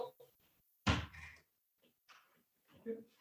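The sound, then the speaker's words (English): A door is opened to answer a knock with a single solid thunk and a brief rattle, followed by quiet shuffling and faint, indistinct voices. “That's not Ray's knock. Oh, is it not? Is that? Let's answer it.”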